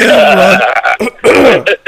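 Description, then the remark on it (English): A man coughs and chokes on tofu: loud, strained gagging bursts with a raspy, voiced quality, broken by short gasps, three or four heaves in quick succession with no speech. “Now look, he's got me all choking up again.”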